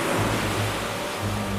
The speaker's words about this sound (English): Cutting back to the same stock shot of waves crashing inside a rocky cave we saw before